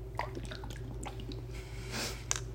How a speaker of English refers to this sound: Please don't spit out all the water.